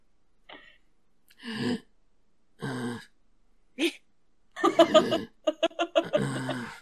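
A voice performs an exaggerated calm-down breathing exercise, four loud rhythmic huffs spaced a second or so apart, before breaking into bubbly laughter.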